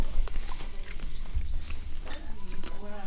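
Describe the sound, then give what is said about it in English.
Crisp crunching into the microphones as someone bites and chews a peanut butter candy egg that looks like a robin's egg, with irregular cracking sounds repeating over a few seconds and a faint murmur of voices underneath. “I can hear you crunching on the microphones.”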